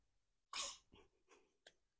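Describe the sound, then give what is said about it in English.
A sharp, explosive sneeze bursts out, followed by a few softer, breathy snorts and a quick sniff trailing off into quiet. “Oh, there he is sneezing.”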